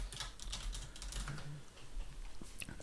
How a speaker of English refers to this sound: As I type this, apologies to the listeners because I do have a mechanical keyboard.